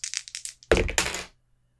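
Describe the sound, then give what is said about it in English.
Two dice rolled for a tense roll in a game: a few quick clicks as they rattle, then a loud clatter as they hit and tumble across a hard surface before settling into silence. “Tense roll, 2 dice.”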